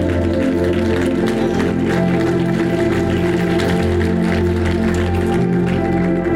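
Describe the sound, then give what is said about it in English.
Steady, dense audience applause runs without a break for several seconds, mixed with a sustained, droning musical tone underneath that stays at a constant loudness throughout. “That applause is your reward to them.”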